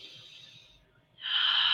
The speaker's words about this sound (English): The deep, deep breathing. The deep breath also connects us to the source, and the deep breathing.